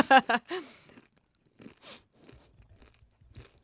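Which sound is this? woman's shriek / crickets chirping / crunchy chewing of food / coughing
crunchy chewing of food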